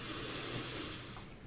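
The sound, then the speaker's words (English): A steady, airy inhale drawn in through the nose during a seated centering breathing exercise, soft, lasting over a second with a faint hissing quality and no talking. “Breathing in through your nose.”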